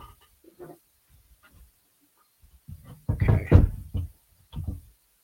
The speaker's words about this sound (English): All right, I'm actually going to mute myself because this is really loud hammering. So I'll be right back.